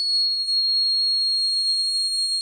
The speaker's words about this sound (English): There you have it, the howling mouse of the prairie. So here I am out in the desert trying to capture it on tape.